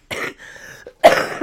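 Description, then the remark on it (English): Two harsh coughs from someone laughing, the second louder than the first, separated by a short raspy intake of breath. No one speaks. “every time you hear me coughing, it's because I'm laughing.”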